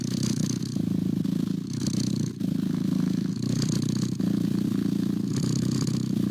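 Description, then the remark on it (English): A domestic cat purrs steadily, a low continuous rumble with rhythmic breathy surges repeating about every second and a half, sounding like a short loop played over and over. “This is a sample of a cat purr”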